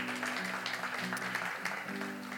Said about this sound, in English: And this is our great, yeah, you can applaud the Lord. That's an amazing thing.